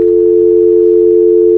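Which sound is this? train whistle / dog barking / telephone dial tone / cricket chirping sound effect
telephone dial tone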